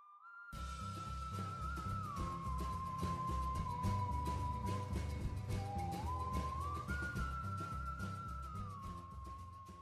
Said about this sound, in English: And this song starts with that whistling again, and it immediately comes in with a crash and a snare that is accented on the 1 and 3. This song is also in 6/8, which makes it have like a very swingy sound,